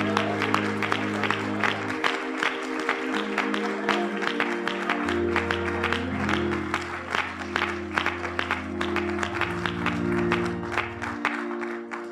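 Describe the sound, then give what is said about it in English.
An audience applauds the Lord steadily, a dense wash of clapping with some sharper rhythmic claps, while sustained organ-like chords play underneath throughout. “In the name of Jesus, would you give the Lord a big round of applause, and would you magnify the name of the Lord?”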